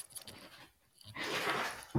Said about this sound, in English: You're fine. We love dogs on this podcast. They love to talk. Every time I answer the phone, they're like, yes.